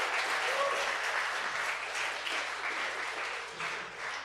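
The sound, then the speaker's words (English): A church audience applauds its longstanding members steadily, a dense, sustained patter of many hands clapping together at moderate volume, filling the space evenly for a few seconds without any talking over it. “These are the stalwarts of the church, the oaks. A round of applause.”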